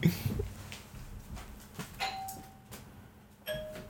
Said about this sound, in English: That was a car horn.